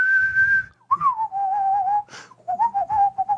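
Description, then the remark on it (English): A person whistles a short, wavering tune, one steady high note sliding down into a lower melodic run with brief breaths between phrases and no talking. “Do you want me to like whistle or something?”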